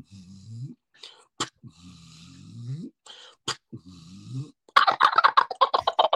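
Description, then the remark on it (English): A wild turkey being called in by a hunter gobbles, ending in a loud, rapid rattling burst of notes. Earlier, low, soft calls are broken by a few sharp clicks, all fairly quiet until the gobble. “You hear the rattle at the end of his gobbling.”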